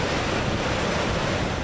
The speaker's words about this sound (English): Niagara Falls, the name comes from the Iroquois Indian word meaning thunder of waters. And thunder it does.